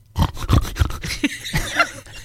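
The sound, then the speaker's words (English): Someone imitates a pig's snort for a children's animal song, with a quick series of rough, nasal grunting bursts, loud and gritty, followed by a few breathier snuffles, with no words spoken. “And what would a pig do?”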